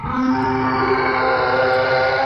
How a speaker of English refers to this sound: Someone did a big belch.